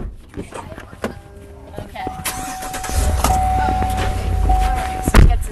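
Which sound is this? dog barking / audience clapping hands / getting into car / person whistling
getting into car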